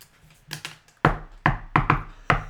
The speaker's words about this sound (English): You head across the river to the house, to the big mill house. You knock on the door.